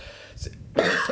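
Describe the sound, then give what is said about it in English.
A person imitates General Grievous's raspy cough: a short throaty hack followed by a louder, harsh wheezing burst, with no other sounds. “I can do his cough.”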